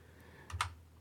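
Two quick keystrokes on a computer keyboard, close together near the middle, soft clicky taps against a quiet background with no one talking.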